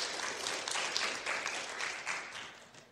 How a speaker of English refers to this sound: You can stop, you can applaud, you can do whatever you want to. We crossed the goal, right? 6,033, first weekend in October. That was kind of lame. You can applaud now. Thank you.